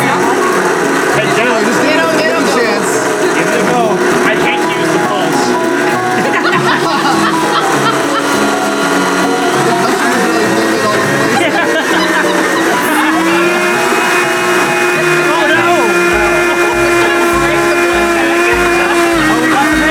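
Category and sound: household object, blender running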